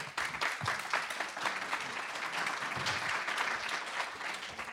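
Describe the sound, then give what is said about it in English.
An audience at the UI Main Library Gallery applauds steadily to thank two guests, a dense, even patter of many hands clapping at a moderate level for several seconds with no voices over it. “But I hope you'll thank our two guests with a little applause.”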